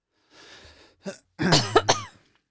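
A soft, breathy rasp of throat clearing, a short sharp hack, then a louder, rough, voiced cough with a couple of strained bursts, all with no talking.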